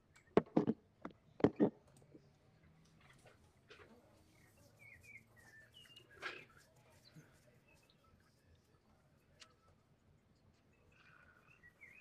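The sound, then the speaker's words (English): Pet birds chirp in short, scattered bursts at moderate volume, mixed with a few sharp knocks and clatters early on and a low room rumble throughout. “Are those your birds?”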